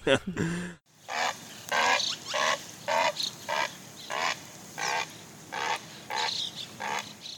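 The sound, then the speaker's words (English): A great blue heron, disturbed and angry, gives a loud series of about ten harsh, raspy, throaty squawks, evenly spaced in a steady rhythm, each short and grating. “when they're disturbed and they're angry, they give that freaking pterodactyl, squawk, like it is, it's like back of the throat.”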